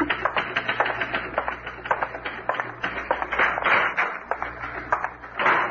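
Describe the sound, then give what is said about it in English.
Rapid, steady typewriter typing of a report fills the whole stretch, a dense run of sharp mechanical key strikes with brief uneven pauses and no voices over it. “I'm typing up his report now.”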